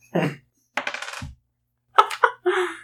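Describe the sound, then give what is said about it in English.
Dice clatter and tumble across a hard tabletop in several short, bright bursts with brief pauses between, fairly loud, with no one talking; the dice are being rolled for damage in a tabletop game. “I just rolled almost like max on everything.”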